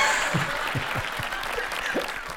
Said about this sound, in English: Throwing a laugh track, clapping, children laughing. Yeah. All that just happened.